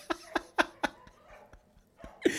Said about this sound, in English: I think there might be multiple dogs outside my window. Oh, no. The whole neighborhood is barking.